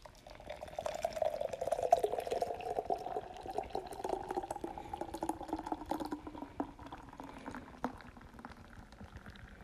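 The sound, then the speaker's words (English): Guinness Stout Nitro Cold Brew Coffee beer pours steadily into a cup, a continuous liquid stream with a gently gliding pitch that lasts about eight seconds before tapering off, with no one speaking. “Anyways, first step is to pour.”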